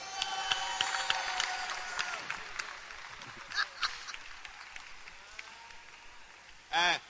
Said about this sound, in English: Clap for Jesus.